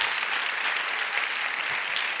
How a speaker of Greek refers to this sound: Δώστε το χειροκρότημα που σας ζητάω, το αξίζουν όλοι τους.